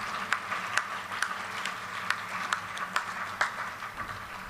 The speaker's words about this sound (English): Yeah, give these guys a round of applause. Well done, guys. Amazing.